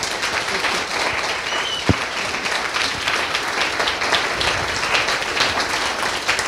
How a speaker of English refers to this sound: So I would love for all of us to really acknowledge those people. And could we please have a round of applause for everyone behind the scenes?